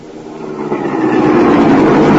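A car engine rumbles steadily as the car drives and pulls to a stop, its low, broad drone swelling gradually louder over a couple of seconds, with no voices present.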